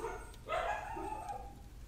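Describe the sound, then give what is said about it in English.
A dog lets out a short bark that trails into a drawn-out whining yelp, fairly quiet against a low background hum, with no one talking. “Dog. Sorry.”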